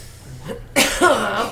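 A loud cough bursts out, quickly followed by a second, raspier cough that trails off with a voiced, throaty tail. Faint background noise comes before it.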